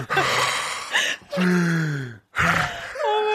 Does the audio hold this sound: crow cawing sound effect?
no